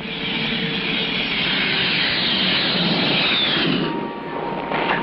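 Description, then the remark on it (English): The jet engine of a Grumman Tiger aircraft roars loudly and steadily for several seconds, a dense, rushing wash of noise with a faint high whine that shifts slightly in pitch, no voices present. “Hi, this is my friend, the Grumman Tiger. It's a jet,”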